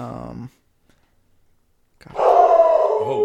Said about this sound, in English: That was a nice bark there